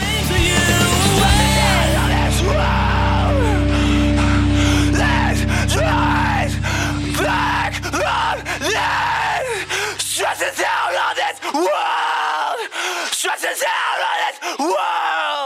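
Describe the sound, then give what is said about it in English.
Raw, strained screaming vocals at the end of an emo song, loud, first over a sustained low instrumental drone that fades away, leaving the screams ringing out almost unaccompanied. “those screams at the end when he's kind of like acapella screaming.”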